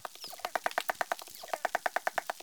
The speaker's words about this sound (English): The researchers sent us the dolphin sounds that they recorded. Here is one dolphin singing alone.